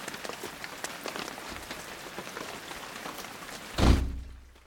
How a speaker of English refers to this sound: I just got caught in the rain and I couldn't see a thing